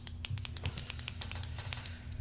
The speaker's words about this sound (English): This doesn't bother you, does it? Sometimes I click my pens when I'm nervous.